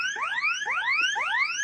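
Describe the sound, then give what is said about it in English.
A delivery robot's loud electronic alarm sounds in repeating rising sweeps, roughly three per second and a half, each tone gliding upward in pitch with bright harmonics, continuous with no talking. “So at least this bot actually had an alarm ringing”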